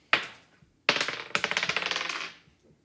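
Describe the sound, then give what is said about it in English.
New dice rattle and tumble across a hard table during perception checks: a sharp clack, then another drop followed by a quick run of bouncing clicks that settle after a couple of seconds. Crisp, no talking. “I love these new dice.”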